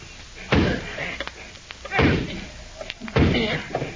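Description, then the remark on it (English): A hammer whacks a chisel, with burlap laid over it, to break a door lock: three heavy, loud blows spaced over a second apart, each a hard thudding strike with a short ringing decay and faint background murmur between. “You take the chisel, Jigger. Right. Squirt, you the hammer.”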